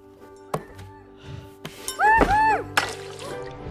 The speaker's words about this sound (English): She dropped her water all over her wood.